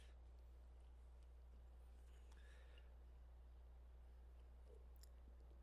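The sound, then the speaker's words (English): Faint, irregular clicking of keys being typed on a keyboard while someone searches Amazon for a Halloween costume, soft beneath a steady low hum, with no voices. “What's the verdict? Typing.”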